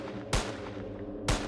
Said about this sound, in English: One night, they heard a gunshot go off, followed by a long, full-auto burst. And another, and another, and another. Then, single gunshots.